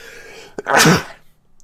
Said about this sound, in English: It's making me sneeze.